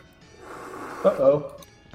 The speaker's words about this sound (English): Uh-oh. Oh, God. Oh, God. Breathing in that foam tastes terrible.